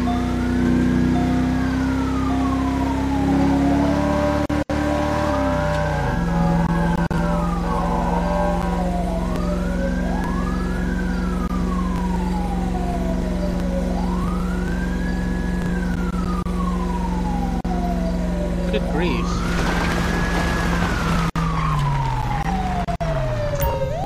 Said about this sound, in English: Okay, he still has his lights on. I don't know why he still has his lights on. Or, no, not his lights, but his sirens. He still has his sirens on, but yet he's, like, not even...